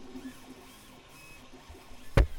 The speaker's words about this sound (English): And what you're hearing, that's the filament printer. And we're actually printing a hexatube, as we're calling it, but it is it's going to be the holder of the Starship Pen.